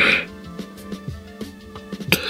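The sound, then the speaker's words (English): A loud, drawn-out yawn: a breathy rush of air at the start, then a voiced, wavering groan that slides up and down in pitch over about two seconds. “That was a thug yawn.”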